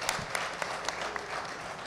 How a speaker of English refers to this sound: Big round of applause for Greg Connors.